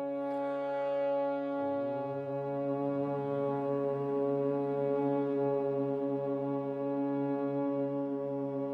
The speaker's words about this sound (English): So we'll start just by humming. Take a deep breath in and then hum this note. Breath in.